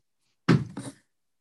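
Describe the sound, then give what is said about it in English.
A door swings shut with a solid, low thud, followed a moment later by a second lighter knock as it settles into the latch. Silence surrounds it, with no voices. “Close the door, please.”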